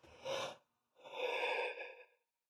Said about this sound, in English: I just yawned again, I'm sorry.